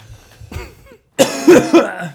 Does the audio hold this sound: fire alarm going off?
no